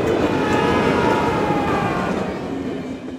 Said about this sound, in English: There's a runaway railway trolley about to kill 5 innocent people on the track